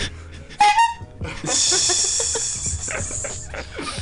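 A short, loud honk from a horn being played by someone in the back sounds once near the start, followed by a long stretch of breathy, hissing noise with faint background clatter.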